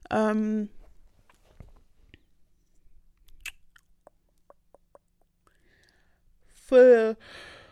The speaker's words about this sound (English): Guys, I'm so sorry. Oh, the yawns are kicking in. I'm so, so sorry. It's just alcohol. And also, I'm obviously old. Like, my bedtime is at 10.